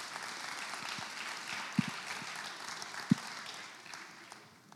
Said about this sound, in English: Why don't you all give yourselves a massive round of applause and appreciation. Yeah.